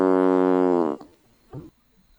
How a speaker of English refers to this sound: I needed to stall longer to pull up the fart sound effect.